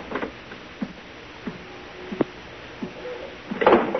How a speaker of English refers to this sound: at the same time, the door opened in the suite and the silhouetted figure of a man entered the room.